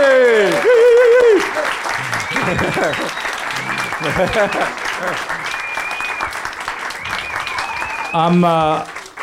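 A crowd claps steadily for about nine seconds, a dense wash of applause punctuated by loud whoops and cheers at the start and again near the end.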